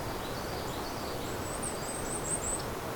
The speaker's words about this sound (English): It's gonna be a migrant. There it is again. Kind of a short warble.